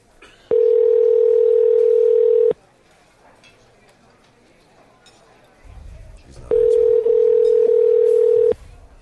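An outgoing prank phone call's ringback tone: two long, steady electronic rings, each about two seconds, separated by a pause of several seconds, loud and clear with faint background rustling.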